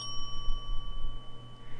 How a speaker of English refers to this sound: And then you hear a bell.